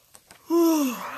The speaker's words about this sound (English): I'm not even tired. I don't know what this is. Stress yawn, probably.